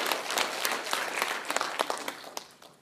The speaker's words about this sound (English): Yeah, that's awesome. You can clap for that.